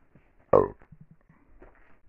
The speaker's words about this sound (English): Whoops, had to burp.